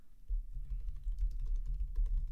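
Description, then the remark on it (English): Rapid typing on a computer keyboard, a steady stream of soft clicky keystrokes over a low rumble, with no one speaking. “Can you hear me typing? Yes, you can.”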